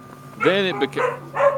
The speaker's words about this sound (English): Then it became that the wife is home and the dogs are barking.